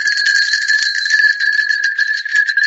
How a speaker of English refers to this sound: Somewhere in the distance. What are those? Are they cowbells? Are they sheep bells? No, they're sleigh bells.